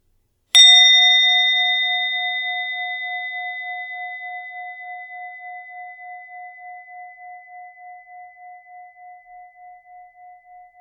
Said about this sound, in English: And you'll hear the sound of the bell as we start, and you'll hear the sound of that bell again at the end.